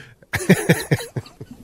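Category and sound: human body sound, person coughing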